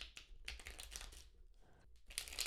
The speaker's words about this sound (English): Just take a moment, listen to the cards by connecting to the sound of them being shuffled and just trusting that this message will resonate no matter the future place or time to which you listen to this episode.